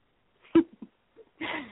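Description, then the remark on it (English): A sneeze: a sudden sharp burst, a few small catches of breath, then a longer, loud, hissing exhale. No talking. “God bless you”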